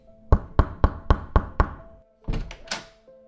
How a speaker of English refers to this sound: Darling, what on earth has gotten into you knocking on my door like that?